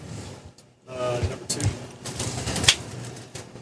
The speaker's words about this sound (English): That was a weak clap. That was a pathetic clap. Wait, I don't get the clap.